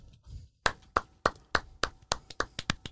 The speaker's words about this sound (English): You're clapping louder than anyone else. Always.